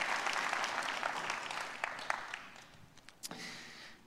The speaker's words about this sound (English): Have you been blessed by the morning so far? Can we clap? Thank God for a great morning so far.